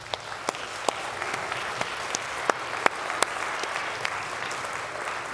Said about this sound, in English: It's a little bit self-serving because I'm a dad too, and so I'm clapping for myself. But I'm not clapping for me. I'm clapping for all of the other dads in the room, all right?